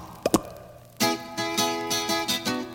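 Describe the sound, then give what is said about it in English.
A squelchy blob sound effect from the opening title sequence of a blob monster movie: two quick wet plops, then a louder, wobbly tonal gurgle that pulses in uneven bursts for about two seconds, with no talking. “Awesome blob sound.”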